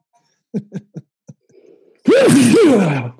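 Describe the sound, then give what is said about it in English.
Several short, catching breaths build up, then a single loud, explosive sneeze bursts out with a voiced, wavering cry before trailing off. “I'm going to sneeze.”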